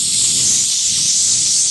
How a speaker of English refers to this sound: I felt like she just did one last spray of Luster Silk pink oil, pink moisture oil spray on her hair. Like, hold on.